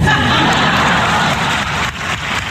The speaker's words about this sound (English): Is that a golf clap or somebody fapping? I have it as weak applause, which is what I do when I'm done fapping.